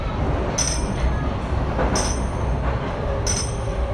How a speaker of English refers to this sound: his tambourine and the bells he wears around his legs announcing his arrival